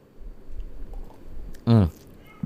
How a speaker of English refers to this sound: Firstly, I'm going to take another quick sip.